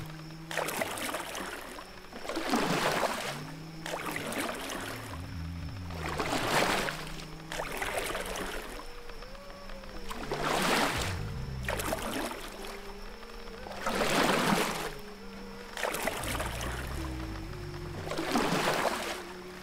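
Oars dip and pull through river water in a steady rhythm, about eight strokes, each a splashy swoosh, with wooden creaks and knocks between them from a boat that is falling apart. No voices, fairly loud.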